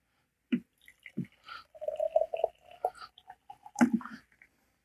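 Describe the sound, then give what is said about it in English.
Freshly boiled, very hot water pours into a glass with a trickling, ringing tone, framed by a few sharp clinks of glass. Fairly quiet, with no one talking. “I brought with me today a glass. And behind me here, I just boiled some water.”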